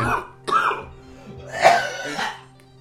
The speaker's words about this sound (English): Sorry. It really was like a cartoon Dickensian cough.